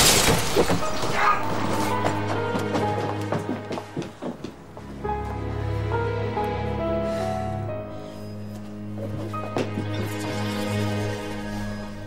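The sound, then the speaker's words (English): A loud glass smash and clatter of shards bursts out at the start, then gives way to sustained, swelling orchestral music that carries on to the end with no speech. “And the Doctor's, well, Flavius theme comes in episode 2, I think it is, when the hand jar gets smashed and Jack picks up the hand.”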